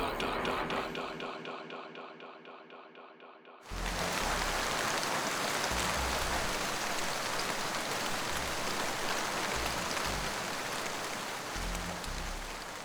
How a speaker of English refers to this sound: It was raining, just like this, that night.